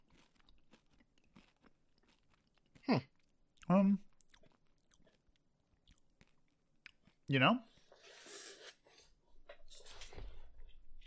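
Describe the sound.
Loud, crunchy chewing of campfire-flavored M&M candies, about four at once, comes in a few sharp bursts, with softer munching and rustling between bites as a person speaks briefly.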